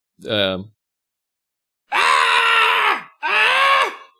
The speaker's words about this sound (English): Hey, can you just like scream real loud?